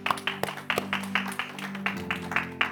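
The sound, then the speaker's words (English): A group clapping in a loose, steady rhythm, about three claps a second, moderately loud over a sustained low humming tone, with no one talking. “Can you clap for yourself that you made it today?”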